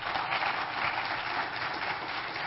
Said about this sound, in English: Would you give her a round of applause, please?